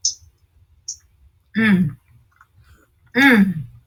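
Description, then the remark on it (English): Wet mouth clicks and smacks of someone chewing juicy food, broken by two short voiced murmurs from the eater, with quiet pauses between. “Yeah, this is so juicy. I didn't sip, slurp, gulp.”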